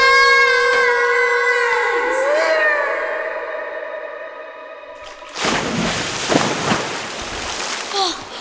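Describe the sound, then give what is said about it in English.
A sustained, wavering tone slides down and cuts off. After a brief hush, people plunge into water in total darkness with a loud splash, followed by rushing, churning water of a river running through a cavern. “We hit the water in total darkness.”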